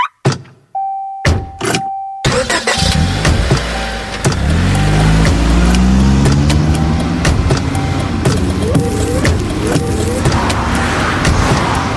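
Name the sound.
car driving on road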